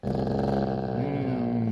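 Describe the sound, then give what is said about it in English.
A dog named Mahler growls low and steadily at the microphone of radio station KUCI 88.9 FM in Irvine, California, a continuous rumbling snarl that holds for nearly two seconds with a slight rise partway through. “Good growl, yeah.”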